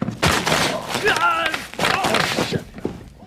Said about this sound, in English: You popping those fucking bubbles. Now, I hear you popping those fucking bubbles.